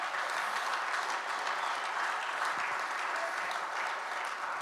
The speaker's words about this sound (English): Come on, give the Lord a hand clap tonight.